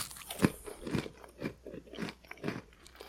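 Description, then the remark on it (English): Close-up crunching of someone biting and chewing crunchy Nabisco crackers into the microphone, with about six sharp, evenly spaced crunches right against the microphone and no talking. “So real quick, I'm just going to bite one of these into the microphone so our listeners can hear that these do have some crunch factor to them.”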